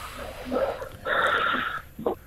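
Heavy, raspy breathing: a couple of short huffs, then a long, loud, airy exhale, followed by a quicker breath at the end, with no talking.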